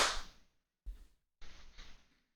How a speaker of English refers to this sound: We'll do a clap sync in 3, 2, 1.